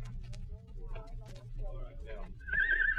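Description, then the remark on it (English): Indistinct voices and a low hum fill the background, then near the end a horse at a corral lets out a loud, quavering whinny. “Which way is it to the place where they keep the horses?”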